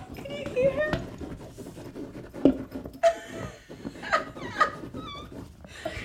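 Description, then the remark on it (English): A female dog digging for something, producing irregular bursts of scratching and scraping on a surface, with a few brief whiny vocal sounds and muffled voices in the background. “Can you hear the dog?”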